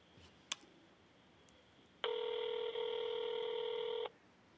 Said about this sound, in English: It's ringing. Okay. Oh, there's the ring. Okay. There's the ring.